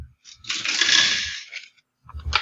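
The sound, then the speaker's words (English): Dice rattle and clatter down a dice tower in one bright tumbling burst lasting about a second, tapering into a few last ticks before a short pause and another knock. “This dice tower is great.”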